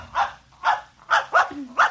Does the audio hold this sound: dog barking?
yes